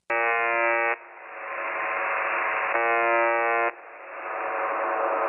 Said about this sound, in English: So if you go to this signal and you start listening to it, it's just this loop of this buzzer sound and it's fucking bizarre. So here's what it sounds like.